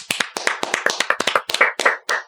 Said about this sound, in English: Clap for Klopfer.